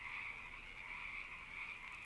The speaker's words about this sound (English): And now the frogs and bugs and frogs back in. Is it just frogs for the next minute? It's just this for like the next minute.